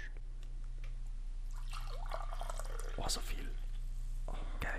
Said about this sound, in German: darf ich mir von deinem geilen Grüntee eine Tasse einschenken? Gerne, soll ich dir einschenken oder schenkst du?